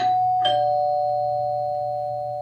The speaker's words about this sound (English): He had barely said amen when the doorbell rang.